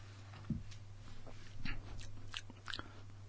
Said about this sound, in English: Let me talk about the mouth feel real quick. Hang on a second. Let me take another sip and get the real good mouth feel here.